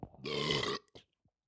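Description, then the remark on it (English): A single loud belch from someone drinking beer, lasting about half a second, rough and resonant, followed by a short breathy exhale and faint mouth sounds. “That was what we call a belch.”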